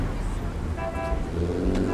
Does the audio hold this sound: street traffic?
yes